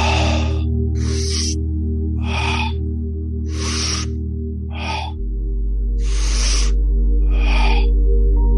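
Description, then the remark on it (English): Loud, breathy deep inhales and exhales through the mouth repeat in a steady rhythm, about seven breaths in all, during a guided breathing exercise, over a sustained, low ambient drone. “Recommitting to the breath, deep inhales and exhales, inhaling through the mouth, exhaling through the mouth.”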